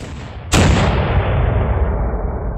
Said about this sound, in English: In the end, Kilkenny gave Cromwell a decent fight. Sieges weren't really his strong point, and he had to probe the city for a day or two before one of his cannons finally breached the walls.